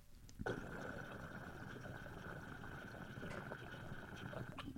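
Water bubbles and gurgles through a full-size double-diffused glass pipe as someone takes a pull, starting abruptly and holding a steady, dense churn for about four seconds, with no talking.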